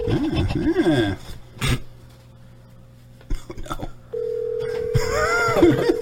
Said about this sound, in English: It's ringing. It's ringing. Oh my god, it's ringing. So exciting. I know. If he picks up.